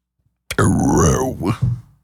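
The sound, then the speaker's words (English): Two people burp at the same time, a loud, drawn-out, throaty belch lasting over a second, with a shorter second burst right at the end before it trails off. “So we both burped at the same time.”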